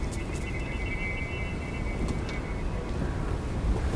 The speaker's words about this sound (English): The wind taking the sound with it.